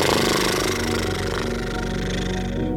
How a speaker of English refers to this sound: Breathing in, breathing out with horse lips.